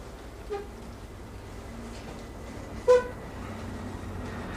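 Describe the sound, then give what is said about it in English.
A truck horn honks twice over a steady background rumble of traffic: a faint short toot first, then a louder, sharper blast a couple of seconds later. “Kiss my ass, truck.”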